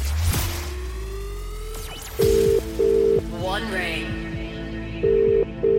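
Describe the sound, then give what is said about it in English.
An outgoing phone call from a radio cash prize draw rings out: two loud double-burst ringing tones, repeated after a pause, heard through the line over a faint background hum. “So come on, pick up that phone within five rings.”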